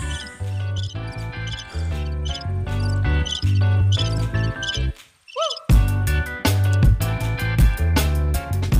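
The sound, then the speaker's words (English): Upbeat music with steady drums plays, then briefly drops out as a voice gives a few quick, high chirps imitating crickets before the music crashes back in. “Why did I do crickets? That's weird.”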